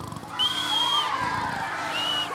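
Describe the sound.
A person imitates a pig snoring, a snorty inhale followed by a high whistling exhale, heard twice in close succession over a steady background hum.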